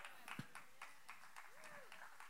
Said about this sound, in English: I see a lot of women clapping now, not many men. I'm a little worried here. Come on now. Let's try it again.